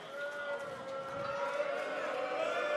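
People boo in a long, drawn-out, steady-pitched jeer that holds fairly loud for a few seconds without a break, booing because a player got a point in a movie-guessing game.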